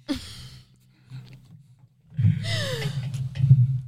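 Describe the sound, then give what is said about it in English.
Noisy breaths blown right into a microphone, a short puff at the start and then a longer, louder rush of air with low rumbling pops, no talking. “I keep breathing in my mic.”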